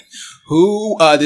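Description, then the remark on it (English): Several people gasp together on a count of three: a quick breathy intake of air turns into a voiced, drawn-out 'ah,' fairly loud, lasting just over a second. “So I guess on three, let's all give a gasp.”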